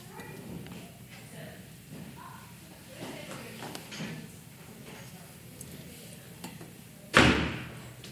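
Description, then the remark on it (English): A door shuts with one loud, sharp slam near the end, ringing briefly before fading. Before it, only a low murmur of background noise and faint indistinct voices. “Doors work.”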